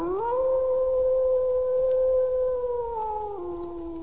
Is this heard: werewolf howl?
yes